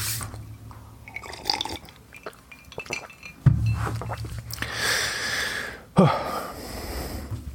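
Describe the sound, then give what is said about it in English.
Quiet sounds of someone sipping a drink: light glassy clinks and handling noises, then two sharper knocks as the cup is picked up or set down. No one speaks. “Take a little sip of my drink.”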